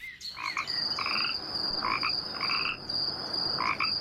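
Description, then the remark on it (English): Frogs croak at nightfall by a river, in short, repeated bursts, roughly one every second, over a steady high-pitched cricket trill that runs throughout. The chorus is moderately loud, with no voices. “The crickets began their singing and the frogs their croaking.”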